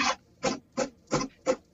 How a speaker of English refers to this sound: Can you hear my printer printing something? What the fuck am I listening to? A toaster fucking a printer? You're listening to my printer printing something.